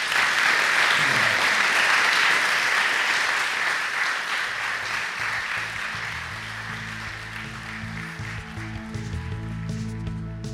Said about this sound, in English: Please clap again